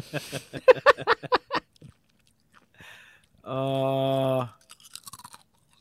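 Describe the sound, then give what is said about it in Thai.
Loud, rapid crunching of a crisp snack being chewed, about nine sharp bites in quick rhythm, then a pause and a steady hummed vocal tone, followed by a few faint crunches. “มันใช่เรื่องต้องกรอบขนาดนี้ไหม”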